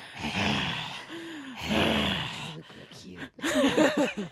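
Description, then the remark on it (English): Several voices make exaggerated, raspy heavy breathing in long breathy bursts, with groaning vocal tones and a few short voiced sounds mixed in, fairly loud, done as a deliberately creepy imitation. “So we all need to do our heavy breathing, creepy voices.”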